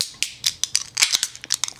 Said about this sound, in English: So let's grab our glass, grab our can, and let's open her up.